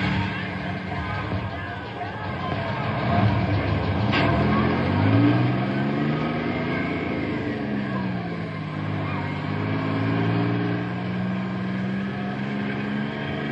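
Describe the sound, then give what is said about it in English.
A heavy bus engine revs and pulls away as a bus leaves with a group of children aboard, its drone climbing and sagging in pitch as it gears up, loud over a constant rumbling, noisy background. “Double time into the bus.”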